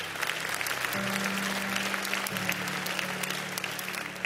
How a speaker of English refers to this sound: You can applaud it, that's fine.